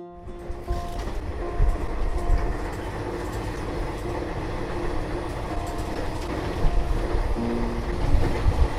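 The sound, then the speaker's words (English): A night train to Tadipatri, a small mining town in Andhra Pradesh, rumbles steadily along the tracks with a continuous low clatter and rattling carriages, a couple of brief tonal squeals rising over the dense mechanical roar, fairly loud throughout. “I jumped on a night train to Tadipatri, a small mining town in Andhra Pradesh.”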